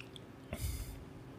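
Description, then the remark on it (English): A single brief sip of bourbon, a soft wet slurp lasting about half a second amid otherwise quiet room tone. “All right, I'm gonna give it a sip.”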